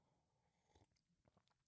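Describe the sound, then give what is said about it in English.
A quiet sip of coffee from a cup, followed by a few short wet mouth and swallowing noises in brief bursts, with no one talking. “What we're looking to do next, and now hold on while I take a pregnant pause for this sip of coffee.”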